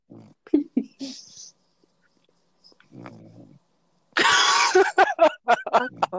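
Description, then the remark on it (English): A pet named Lupin snoring, with irregular snorts and wheezy, rasping breaths, some almost like mumbled talk, separated by quiet pauses and growing louder and busier near the end. “No, I thought she was talking, and I thought, hang on, is Lupin really a you know someone else? And I thought, no, it's snoring.”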